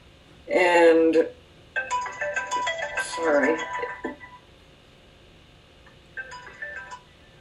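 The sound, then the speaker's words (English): A brief voice is followed by a phone ringing with a melodic electronic ringtone. It plays for a few seconds, pauses, then sounds again more faintly. “I apologize, this stupid phone, thank you.”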